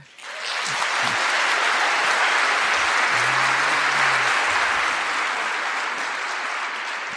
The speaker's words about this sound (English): I note that all three endorsements have gotten applause, rounds of applause. So I'm watching you, Melbourne.